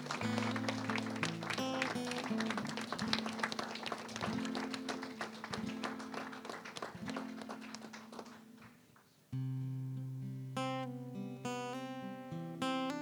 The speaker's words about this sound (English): Come on, everybody all over the house, give God a big hand clap of praise.